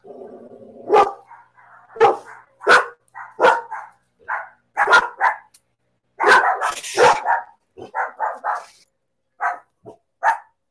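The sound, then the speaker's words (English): Several dogs bark excitedly in rapid, irregular bursts, with sharp yips and a few higher whines mixed in, loud throughout, reacting to a person who walked into the yard. “We got the dogs going crazy.”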